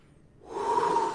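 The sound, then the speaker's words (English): A single forceful exhale, breathy and rushing, swelling from near-silence to a loud, sustained whoosh of air pushed out, with no speech; a person lets all their air out to steady themselves before firing a shot. “And so I take the safety off, I come all the way up, and I could literally hear my PMI, my instructor, telling me, let all your air out, and I was breathing so hard, so I just go”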